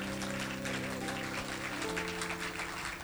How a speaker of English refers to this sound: I want you to clap your hands for that.